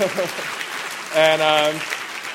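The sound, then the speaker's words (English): A crowd applauds a woman's performance in The Bourne Ultimatum with a steady, dense patter of clapping, and one sustained voiced cheer rises over it midway before the clapping carries on. “You can applaud for that amazing performance.”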